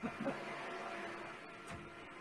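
A vacuum cleaner drones steadily in an office, muffled, a constant low whirring hum that fills the whole moment without pause, with a faint voice briefly audible near the start.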